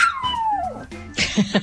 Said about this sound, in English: Not to be outdone is a small dog telling you.